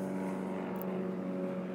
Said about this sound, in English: You guys hear that airplane?